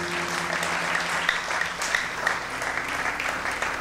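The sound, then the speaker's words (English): A church audience applauds the Lord on a morning of a conference, a dense wash of many hands clapping at once, sustained and fairly loud throughout with no voices standing out. “Can somebody give the Lord a clap in the house this morning?”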